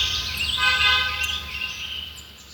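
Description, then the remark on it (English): A car horn blares in one long, sustained honk over a low rumble of rush hour traffic, fairly loud, fading slightly toward the end. “The sounds of construction, cars honking, or even airplanes flying over can interrupt your thinking or what you're doing.”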